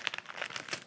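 A package is cut open with cooking scissors, producing a quick run of crisp, crinkling plastic rustles and small snips, moderately loud, with no talking.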